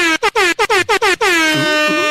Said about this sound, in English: You get the air horn when you do a year sub. Yeah. You know? Yeah. We're going to call it the year horn.